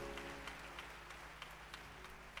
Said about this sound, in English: I need you all to clap for yourself. To clap for yourself.